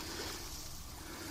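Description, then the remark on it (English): A person splashes and dives under the water in a shallow irrigation ditch after jumping into it, a continuous rushing, sloshing noise that stays even throughout the brief moment, with no voices. “He's diving under the water.”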